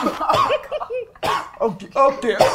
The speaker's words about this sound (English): Oh, okay, you can stop coughing on it.